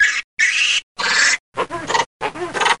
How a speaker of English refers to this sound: Lemur calls like this can help very young babies to learn, suggesting a fundamental link between learning and language.